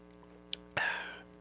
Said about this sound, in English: All right, watch my sexy sip. Ready?